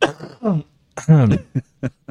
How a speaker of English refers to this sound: Man, you could tell I'm getting over a cold, but anytime I laugh, I start coughing.